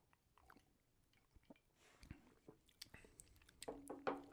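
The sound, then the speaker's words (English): Quiet sipping of bad whiskey from a glass: soft wet slurps, lip smacks and small swallowing clicks, growing a little louder toward the end, with no talking. “We're drinking some bad whiskey right now. Yeah. Tastes like... Let's take a sip and we'll each describe the flavor.”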